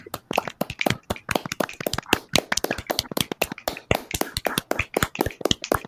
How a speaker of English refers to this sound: Let's give a little round of applause